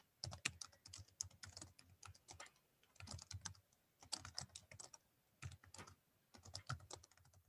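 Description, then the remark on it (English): Rapid typing on a computer keyboard while entering an online search for a nightclub network locator site, with bursts of quick clicky keystrokes separated by short pauses, heard alone without any talking. “So what I'm typing in is Vampire Underground Nightclub network locator.”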